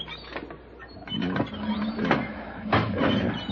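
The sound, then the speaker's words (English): A dry hand pump at the drought-stricken Wellman Ranch, by an empty watering trough, is worked in a few uneven strokes, each a scraping, squeaking mechanical rasp of moderate loudness, with no water gushing and no voices. “I tried the hand pump.”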